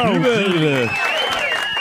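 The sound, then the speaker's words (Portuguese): A burst of clapping from a group, loud, mixed with whooping, tonal voices that slide down in pitch before the claps carry on alone for a moment. “Uma salva de palmas.”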